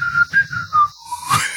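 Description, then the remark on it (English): A person whistles a brief, bright tune: a few quick, clear notes hopping in pitch, ending in a smooth sliding whistle, with no talking. “And they're whistling. What's the whistling sound like?”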